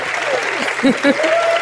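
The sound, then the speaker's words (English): An audience of the show Star Talk claps steadily, a dense wash of applause holding at an even level, with a few brief vocal sounds breaking through in the middle. “So give it up for Startorial Posture.”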